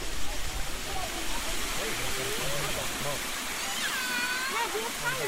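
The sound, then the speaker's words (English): Steady, full roar of rushing water from a waterfall, the Cascade, on a river beside a road in sunshine, constant throughout, with a voice faintly talking underneath the torrent. “There are lots of large stones to my left, demarcating the edge of the road, and then the river is on the right, the Cascade is on the right. You can hear it now, I imagine.”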